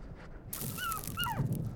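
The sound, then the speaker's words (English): A wild dog gives two short, high whining yelps in quick succession, its cries sliding downward in pitch, over a steady noisy background. “Wild dog walks right through my siren routine.”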